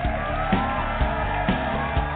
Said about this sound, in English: It's just not pretty when you applaud and clap that loudly.